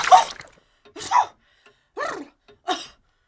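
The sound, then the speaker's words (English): A loud sneeze, heard as a sharp burst of breath followed by three short, voiced gasping bursts spaced about a second apart, with silence between them. “I just needed a good sneeze.”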